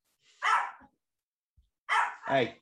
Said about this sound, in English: Sorry, there's a dog walking outside, and my dog is an absolute spastic.